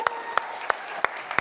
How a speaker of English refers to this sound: Okay, come on, two volunteers, come up. Can we have a massive round of applause?